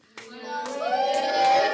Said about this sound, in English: Give me a cheer.